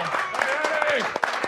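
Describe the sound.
Audience applause with scattered claps, mixed with shouting and cheering voices over a continuous crowd din, as the audience gives a round of applause to a man on his way out.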